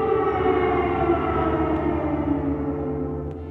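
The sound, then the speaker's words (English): An air raid siren in Kyiv during the war wails in a loud, sustained, steady tone whose pitch sags slightly toward the end, droning without a break and with no voices. “Like all the citizens, we got used to the air raid sirens.”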